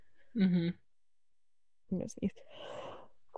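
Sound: sneeze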